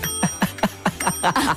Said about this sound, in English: The other thing I got you then is because it is treacherous conditions out there on your scooter. Yeah. Oh, no. I decided that you needed a new bell.